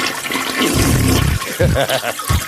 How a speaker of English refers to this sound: Flush.